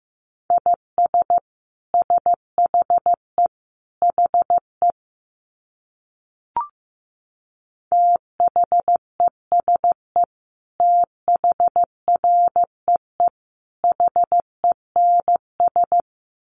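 Morse code sent at about 15 words per minute: a single steady mid-pitched tone keyed into short and long beeps in grouped bursts, with a brief pause and a faint click partway through.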